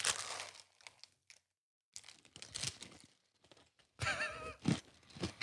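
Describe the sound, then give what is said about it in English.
Crackly rustling of a plastic lolly packet comes in bursts around a short silence, then loud, busy crunching of hard candy as a whole packet of lollies is eaten. “Quite a lot of lollies in there. ASMR. Go on, give us some crunch ASMR.”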